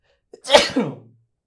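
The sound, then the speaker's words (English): A single loud human sneeze: a quick intake catch followed by a sharp, breathy burst that trails off with a short nasal tail, heard on its own without talking. “We have a sneeze at however many minutes in.”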